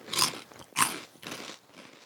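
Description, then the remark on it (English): Crunching of crisp Cheetos crunchy cheese corn snacks, strong-smelling Canadian cheese, being bitten and chewed, with two sharp bites followed by softer crackly chewing, loud and right at the microphone with no talking. “Our crunch right in our mic.”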